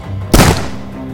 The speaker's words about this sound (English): I yelled as I raised the musket, cocked the hammer, and fired.